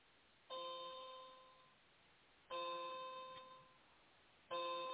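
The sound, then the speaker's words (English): A clock chimes three times, evenly spaced about two seconds apart, each clear bell-like strike ringing out and slowly fading before the next. No one speaks. “It sounds like a clock, actually. But it's doesn't my like clock.”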